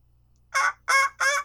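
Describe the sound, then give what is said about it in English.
A person, asked to imitate a squirrel, gives three loud, harsh, squawking calls in quick succession that end up sounding more like a chattering monkey, with no talking. “Can you do a squirrel?”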